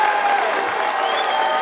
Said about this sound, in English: And immediately, the crowd erupts in both cheers and boos.